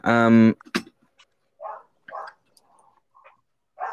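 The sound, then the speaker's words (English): A dog, turning 15, barks once loudly, followed by a sharp click and several fainter, muffled barks at irregular intervals, in the background pretty far away. “Can you hear my dog in the background? He's barking again.”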